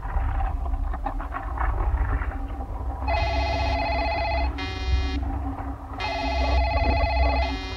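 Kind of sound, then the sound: signal or alarm, telephone ringing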